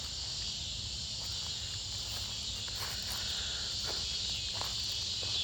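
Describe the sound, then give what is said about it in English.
A dense chorus of cicadas buzzes steadily outdoors, a continuous high-pitched drone that never lets up, with a low background rumble and a few faint ticks underneath. No one speaks. “And also, I'm not putting background music in this particular rant because, dude, the cicadas are boning their asses off. And it's got me feeling some type of way. I love that sound.”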